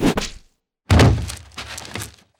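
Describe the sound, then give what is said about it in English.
An arrow strikes a body in the soft part of the neck with a sharp impact, then after a brief pause lands a heavier, meaty thunk that rattles and fades out over a second or so. No one speaks. “The arrow lands directly in the soft part of their neck.”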